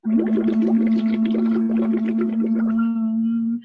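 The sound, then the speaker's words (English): In a straw phonation voice exercise, a steady hummed pitch is blown through a straw into water, producing a rapid, continuous bubbling rattle over the voiced tone. Near the end the bubbling stops and the smooth hum carries on alone. “That is usually where I start, is straw phonation with little kiddos. And it'll either be with, I just have these here because I'm still at the clinic.”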